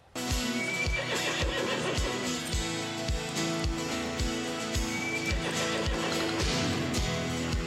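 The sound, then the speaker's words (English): A wild horse neighs and whinnies over steady, rhythmic hoofbeats as it is broken and tamed in a scene from the TV show Hey Dude, with a loud instrumental cover of the show's theme song playing throughout. “And I really like the scene in the end where Ted thinks a little of Brad's writings, but then she ends up successfully breaking that wild horse.”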